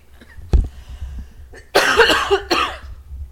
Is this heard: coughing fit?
yes